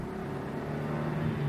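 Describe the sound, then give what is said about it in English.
A rental car engine drones steadily, its low hum swelling slightly toward the end as if revving up. No one speaks. “Remember, it took 1.5 hours just to rent this car.”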